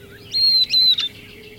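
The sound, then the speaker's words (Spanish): A northern beardless tyrannulet, a small flycatcher, sings a peculiar short, high, thin phrase of a few clear, slightly descending whistled notes, moderately loud over a faint background hum. “Un pequeño atrapamoscas, un mosquerillo chillón, canta un estribillo peculiar.”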